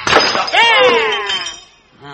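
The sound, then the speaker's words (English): A vase is smashed over a man's head during a fight, a sharp, loud crash whose bright ringing tones slide downward and fade over about a second before a voice briefly starts at the end. “Hit him with the lamp. Hand me something heavy. Give me the vase.”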